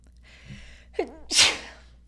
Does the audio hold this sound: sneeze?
yes